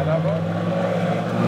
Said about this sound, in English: So we've taken this rare boat ride on the Dead Sea to see some of these changes.